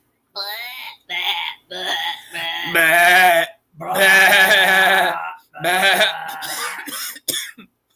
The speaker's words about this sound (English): That sheep got a cough. He's got a cough.